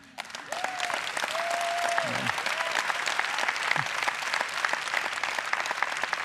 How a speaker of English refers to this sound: Thank you for clapping, but you missed the point.